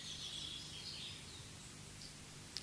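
Faint birdsong drifts through a quiet outdoor setting, with high twittering early on and a couple of brief chirps near the end over a soft, steady background hum.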